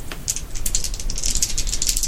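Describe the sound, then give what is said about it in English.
Rapid metallic rattling and scraping clicks as someone picks a door lock to lock it without the key, in a steady irregular stream of bright ticks over a low rumble, with no one speaking. “Yeah, she's trying to pick a lock.”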